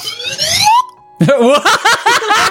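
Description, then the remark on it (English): A slide whistle glides steadily upward in pitch for under a second, bright and loud, then stops; after a short pause a person starts talking. “Who the fuck had a slide whistle? I have a slide whistle.”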